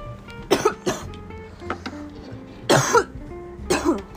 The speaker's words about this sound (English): As you know, cough up a lung, …, cough up a lung.